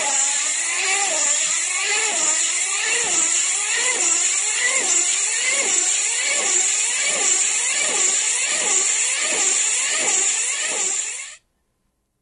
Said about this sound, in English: So this was a remote control car. Huh. And at the highest pitch, it was going 200 miles an hour.